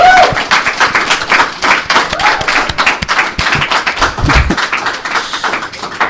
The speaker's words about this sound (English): So, please, big round of applause for K-Tech, who made this all possible.